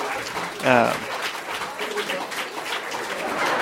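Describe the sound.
Steady applause from a crowd, a dense crackle of clapping that fills the whole moment at moderate volume, with a brief voice-like cheer rising near the start.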